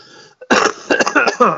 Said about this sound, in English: Do you mind not coughing? I told you I've been sick recently.